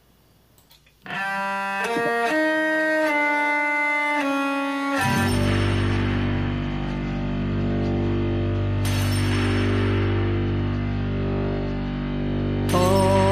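A song intro opens with a few effects-processed guitar chords changing about once a second, then a loud, distorted full band with heavy low end crashes in and drives on steadily.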